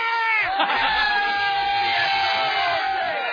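A crowd of fans screams and cheers continuously, a dense wall of high-pitched shrieking voices that stays loud throughout, with no pauses.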